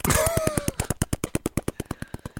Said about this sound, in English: Wait, is that the spoiler helicopter I hear?